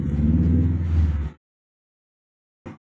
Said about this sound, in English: I'm sorry, I heard the car.